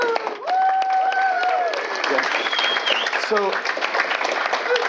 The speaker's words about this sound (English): We're at Agile Games in Boston, Massachusetts. It is May 2015, and everyone, we should give a round of applause, because guess what?